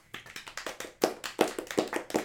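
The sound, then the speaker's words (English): Rhythmic hand clapping: roughly a dozen sharp, even claps that grow louder and fuller partway through, with no voices. “I recorded the clapping and I'll send it to them by email.”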